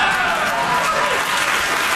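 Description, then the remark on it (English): Bill Maher's large studio audience cheers and claps loudly and steadily, hooting and hollering, with whoops rising out of sustained applause that fills the whole stretch. “So Bill Maher's crowd, which is infamously lefty, hooting and hollering and cheering at every one of those points.”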